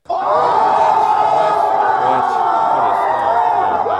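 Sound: applause and cheering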